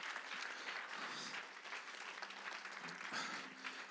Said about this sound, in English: Can we give a hand clap for all of our families and the blessings of God?